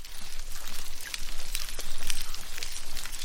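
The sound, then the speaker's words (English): Dugongs (sea cows, marine mammals) munching seagrass and squeaking underwater in parts of the Indian and Pacific Oceans: a dense, steady crackle of clicks runs throughout, with faint short high squeaks surfacing now and then over the fizzing background. “If you were to stick a microphone into the water in some parts of the Indian and Pacific Oceans, alongside the snapping sounds of prawns, you might hear some munching and squeaking noises.”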